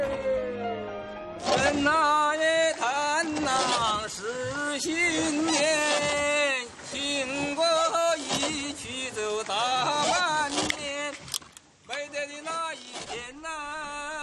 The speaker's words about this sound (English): They occasionally show off their boat towing skills. They sing a few parts of the tracker's song or their favorite folk songs.